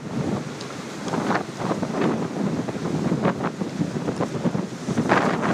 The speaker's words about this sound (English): Is this too windy for you? It ain't too windy for me.